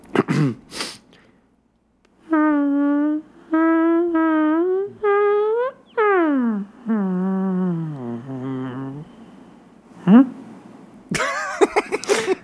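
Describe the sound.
A voice imitates a brother's long fart: four buzzing, droning bursts, then a drawn-out wavering blast that slides lower and sputters out, with brief breathy noises before and after.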